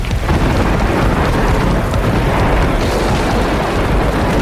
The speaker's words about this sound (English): Uh-oh. Just as we're about to take off, thunder, lightning.